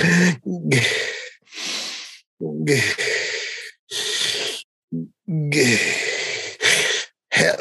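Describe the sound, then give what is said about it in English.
Loud, exaggerated heavy breathing, a voice mimicking it with repeated forceful inhales and exhales in an uneven rhythm, with brief pauses between breaths. “Breathers, just weird loud breathing people, drives me nuts.”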